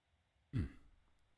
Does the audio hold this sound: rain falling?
no